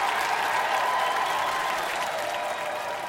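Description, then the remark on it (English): A crowd applauds steadily after Willie's piano show, a dense wash of many hands clapping at once, sustained and fairly loud throughout without pause or voices standing out. “And would you believe it, that crowd of sorry souls and goons actually applauded.”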